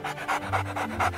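A dog pants rapidly and steadily, about five quick breathy huffs in just over a second, fairly loud with no talking.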